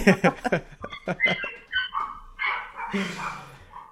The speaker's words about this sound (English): Can you hear my dog? Yeah, but it's fine. A little bit, it's fine.